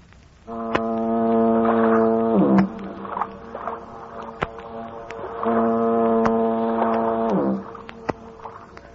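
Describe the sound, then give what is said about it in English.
Two long, deep foghorn blasts boom across San Francisco Bay by the Golden Gate, each holding a rich droning tone for about two seconds before cutting off, with a faint echoing tail between them. “He gets to dreaming of his hometown, San Francisco, the Golden Gate, and that symphony of foghorns booming across the bay.”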